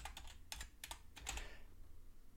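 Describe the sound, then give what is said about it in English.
A quick burst of typing on a computer keyboard, several sharp clicky keystrokes in an uneven rhythm, fading out after about a second and a half with no voices. “But see, I can't see anything on my keyboard. That's why all the typos.”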